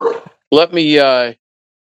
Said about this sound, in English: I'm sorry, my dog's in the background.